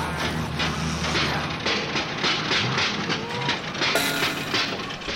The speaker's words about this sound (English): You just broke our only heavy-duty directional drill. It had a self-destruct button?